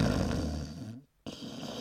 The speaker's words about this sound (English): That's not quite right. My husband revs like a motorcycle in his sleep. Doesn't matter which way you put him. He snores on his back, he snores on his side. It's just, he snores.